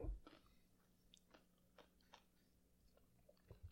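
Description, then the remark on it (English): Someone crunches on ice cubes close to the mic, with a quiet, irregular series of sharp, brittle crunches and chews separated by short pauses. No one speaks. “I'm crunching on ice.”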